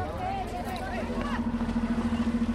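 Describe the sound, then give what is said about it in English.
A bus engine starting up for the trip home, rumbling and humming steadily, its idle pulsing rhythmically toward the end, while faint voices murmur in the background at the start. “The bus starts for home.”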